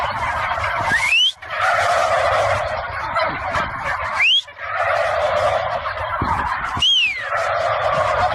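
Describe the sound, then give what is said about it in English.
A turkey gobbles loudly and repeatedly, three rapid rattling bursts, each broken by brief pauses, with no one speaking. “Here's a couple more reasons why the turkey should be the national bird.”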